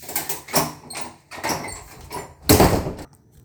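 A door is pulled shut: a few scraping, shuffling movements lead into a louder closing knock near the end, then quiet.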